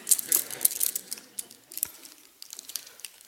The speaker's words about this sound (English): So, help with this illustration. I borrow something from my son. Set of keys.